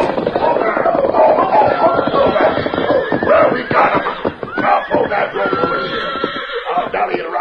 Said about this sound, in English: cutting back and forth to keep the horses in a close pack. They reached the corral and reined up sharply.